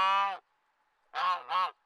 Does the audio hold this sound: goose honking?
yes